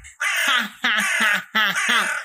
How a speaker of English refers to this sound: Raven, perched in a tree, laughs out loud.